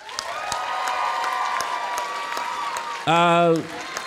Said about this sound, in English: If you think she should go, applaud now.